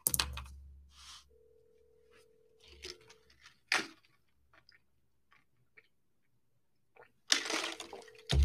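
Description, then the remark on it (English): A phone line rings unanswered: a steady, moderately loud ringback tone lasts about two seconds, then returns near the end, surrounded by crackly rustling and handling noises, with no one speaking. “Oh, please pick up the phone, please. Oh, come on, man.”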